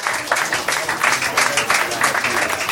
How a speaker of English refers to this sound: Let's get everybody from round one back up. Clap your hands for all the round one comics.